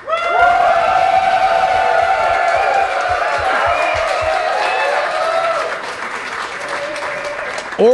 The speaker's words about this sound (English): Now we have to pick number 2 and 3 based on applause. The applause meter is ready to go.